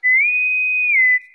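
A single loud, clear bosun's whistle call: a shrill pure tone that slides up, holds steady for about a second, then dips down and cuts off, with no voices.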